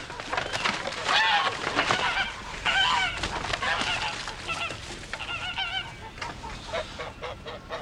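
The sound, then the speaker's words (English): A flock of geese at a house honks steadily, with many overlapping nasal calls clustering into busy bursts. The honking continues throughout without any other sound taking over. “My sister had told me that I might have the pick of her geese for a Christmas present.”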